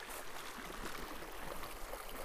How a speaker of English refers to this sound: Oh, do you hear the water, guys?